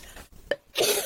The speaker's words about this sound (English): Sorry, I've got to take a cough.